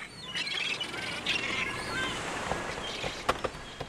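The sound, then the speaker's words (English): Seagulls call repeatedly at the beach, several overlapping squawks and cries at varying distances, over a steady rush of wind and surf. No one speaks. “Then we drove to the beach and talked some more. As above us, seagulls flitted near and far and, for all I know, talked and blogged too.”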